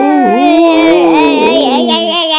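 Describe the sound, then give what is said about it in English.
A voice imitates a dragon in a werewolf costume trying to howl: one loud, strained, wavering cry that slides up and down in pitch for about two and a half seconds, with no other sounds. “Can you make a dragon trying to howl?”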